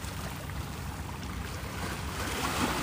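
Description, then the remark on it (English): Ocean waves out on the ocean make a steady rushing wash with a deep rumble underneath, like water churning against a moving boat, continuous for the whole moment with no voices. “And more importantly, can you hear the waves?”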